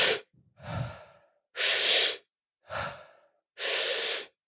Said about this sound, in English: And then you do a few rounds of this breathing thing. And, or even just one round, right? You take 30 breaths. Yeah. And let's just demonstrate real quick what the breathing is.